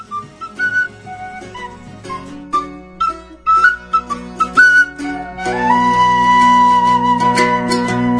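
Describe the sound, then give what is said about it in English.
A rough cut of a song, still being worked on, plays on Bilge Monkey Radio, opening with a bouncy melody of short, clipped notes over a bass line, then swelling into a fuller, sustained passage with a long held high note. “Anyway, so she sent me this song. This is, for the first time heard anywhere, it's a rough cut, she's still working on it, but this is …, only on Bilge Monkey Radio.”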